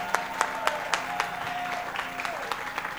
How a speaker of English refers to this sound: Clap for the latest couple in town.